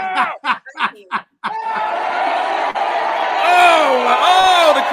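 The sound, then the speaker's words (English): A crowd reacts loudly: a few short, choppy outbursts give way to a sustained wave of shocked groans and drawn-out 'oohs' from many voices, continuous to the end. “The crowd is appalled. The crowd is appalled out here.”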